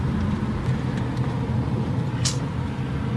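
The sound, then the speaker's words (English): A steady, low rumble of a car driving down the street, with engine and road noise holding constant throughout and a short, sharp hiss breaking through partway. “Say I'm driving down the street, right?”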